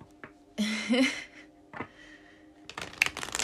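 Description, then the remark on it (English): Tarot cards being shuffled: a riffling burst early, then scattered soft slaps and rapid flutters of card edges, moderately loud with no talking. “I am going to be shuffling my tried and true tarot mudra.”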